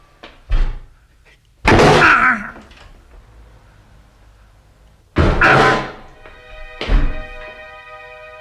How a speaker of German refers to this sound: Während Harry Henkel sich 3 weitere Male gegen die Tür des Toilettenhäuschens warf